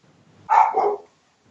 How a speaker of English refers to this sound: We got dogs. The dogs are loose.